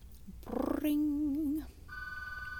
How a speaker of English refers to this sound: Oh my god, there goes the phone again.